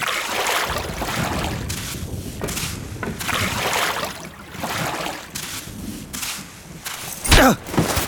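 vehicle, boat on water

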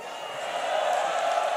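crowd, crowd cheering and whooping

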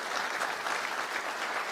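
crowd, applause

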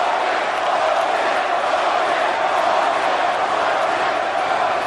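crowd, arena crowd booing

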